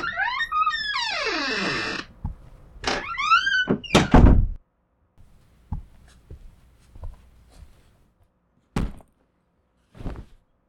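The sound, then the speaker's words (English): A door creaks open with a long, squealing hinge sweep and more short creaks, then lands with a couple of heavy thuds, followed by quieter knocks and two sharp bumps. “You can just come in. The door's open.”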